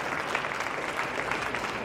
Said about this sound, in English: Guys, keep clapping for Claire.